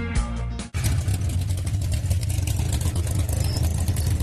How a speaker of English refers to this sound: boy, I love that sound. That's, you know, nothing beats a good old American V8.